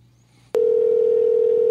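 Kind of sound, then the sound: signal or alarm, telephone dial tone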